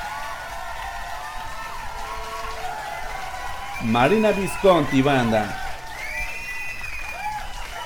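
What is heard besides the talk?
audience applause and cheering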